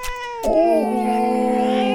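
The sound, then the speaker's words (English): A distressed cat yowls loudly, a sustained, wavering cry with a sharp onset that drops into a long, strained, droning wail lasting about two seconds. “Oh, and the cat is not liking it.”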